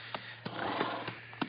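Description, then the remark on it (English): A female horse breathes hard, with heavy, rough, breathy puffs about every third of a second over a steady low hum, and no voices. “Better heave to a spell. She's breathing mighty hard.”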